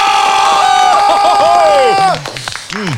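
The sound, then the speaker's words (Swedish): A played applause and cheering jingle: a loud burst of crowd applause and cheering with whoops and whistles, filling the first two seconds before fading into scattered voices and a few rising shouts. “Har mycket som är folk som sitter och applåderar här.”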